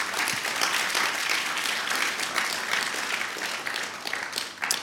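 A crowd claps steadily in a dense, sustained wash of applause, holding even and fairly loud for the whole stretch with no voices breaking through.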